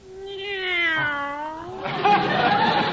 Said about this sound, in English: Meow, meow.